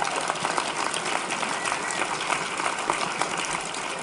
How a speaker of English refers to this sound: One more round of applause for me, y'all. Thank you.